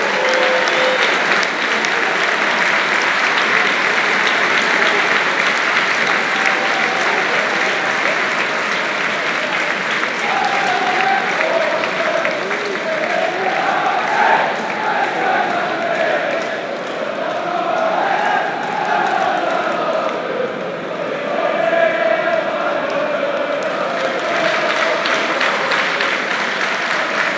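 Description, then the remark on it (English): Sustained applause from a large stadium crowd at a match as an injured player is taken off on a stretcher, a dense, steady wash of clapping for the whole stretch, with scattered voices and faint shouts rising and falling within it. “Applause from all around the stadium.”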